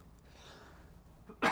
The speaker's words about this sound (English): Excuse me. I'm just coughing into the thing.